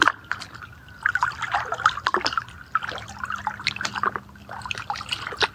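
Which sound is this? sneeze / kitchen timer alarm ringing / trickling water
trickling water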